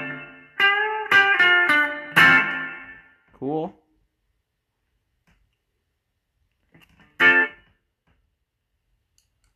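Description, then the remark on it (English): Short bursts of bright electric guitar chords ring out through a '63 spring reverb and a chamber reverb effect, each hit trailing off into a brief wash, followed by a pause and one more lone strum. “See, that 63 spring is just awesome. We got chamber reverb.”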